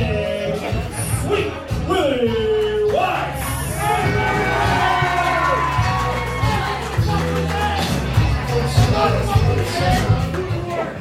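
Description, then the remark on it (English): A dense XICW wrestling crowd at the Ritz in Detroit cheers and shouts continuously during the first match, with individual voices whooping and yelling over a steady, reverberant roar of babble. “Lots of audience interaction here at the Ritz.”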